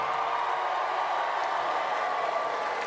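A large audience claps and cheers in a dense, continuous wash of noise that holds steady and fairly loud for the full few seconds, with no one speaking over it. The audience is answering a call for the married people among them to make some noise.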